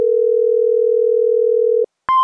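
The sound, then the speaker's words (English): A telephone dial tone hums steadily for almost two seconds, then cuts off, followed after a brief pause by two quick keypad beeps as a number is dialed into the Earth Rangers conference call system. No one speaks. “Let's dial into that conference call.”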